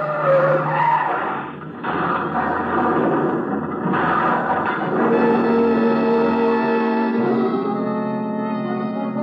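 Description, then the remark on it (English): A car skids off a curve with tires screeching loudly and continuously for several seconds over a roaring engine, the squeal shifting pitch as the vehicle slides, intense. “Stop the car!”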